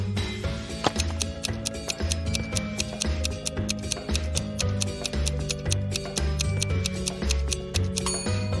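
A clock ticks in a steady, rapid rhythm of sharp, crisp clicks. A low, droning hum runs underneath, and no one speaks.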